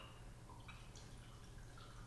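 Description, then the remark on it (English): Mezcal pours into a glass in a heavy pour, a short steady trickle with small dripping, gurgling pitch shifts as it fills, fairly quiet, over a low background hum, with no talking. “Oh, whoa. Heavy pour there.”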